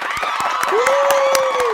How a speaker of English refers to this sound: We are extremely excited to announce that on April 8th, the Back-to-Back Podcast and the NBA Daily Ding will be joining The Athletic. Round of applause.